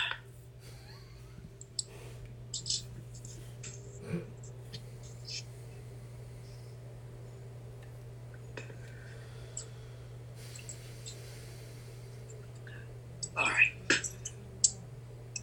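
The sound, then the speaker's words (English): Soft scattered clicks and small handling noises over a steady low hum during a lecture, then a brief louder burst of crackling plastic as the lecturer opens and handles a bottle of water near the end. “excuse me, let me get a bottle of water here.”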